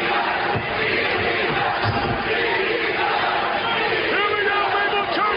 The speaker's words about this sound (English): And people were so pissed with the fucking product that WWE was putting out in the ring that they loudly started chanting ECW, ECW several times.